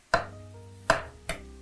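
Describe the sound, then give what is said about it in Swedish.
Ginger being peeled with a knife: three sharp, fairly loud knocks of the blade against a board at uneven intervals, each leaving a brief ringing tone. No one speaks. “Jag kommer vara så fin i kanten att jag skalar den här.”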